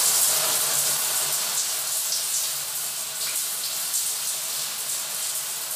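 Steady rush of running shower water, a continuous hissing spray that stays even for the whole stretch, with no voices over it.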